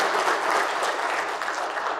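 A room full of people claps steadily in a round of applause for the chamber, a dense, even wash of applause that holds at a fairly loud level throughout without any voices standing out.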